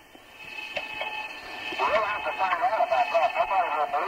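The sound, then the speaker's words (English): A steady, high whistling tone of interference between the radios on the Apollo 11 command and lunar modules hums throughout, with garbled, distorted radio voices breaking in over it during the second half. “The whistling sound was nothing more than interference between the radios on the command and lunar modules.”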